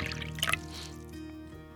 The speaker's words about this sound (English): I'll pour you a drink, and let's get started.